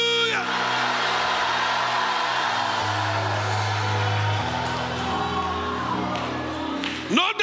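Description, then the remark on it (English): An audience shouts hallelujah and cheers together in a loud, sustained roar of many voices that fills the whole stretch, with a steady low musical drone underneath. “And here you are still shouting hallelujah.”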